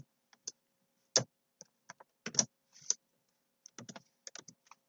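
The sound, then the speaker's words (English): Irregular bursts of computer keyboard typing as HTML code is entered for a web page, with sharp clicks and clacks in uneven clusters and a few heavier thumps, moderately quiet with brief silent gaps between keystrokes. “All right, so we are done typing in our scaling down.”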